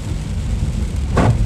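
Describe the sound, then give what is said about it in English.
Heavy rain roars steadily with a deep low rumble, a downpour drumming on a car driving a little under the speed limit on a road with a lot of water on it, and a brief brighter swell near the end. No voices. “It's just, it's raining a lot, so we gotta be careful out here, y'all.”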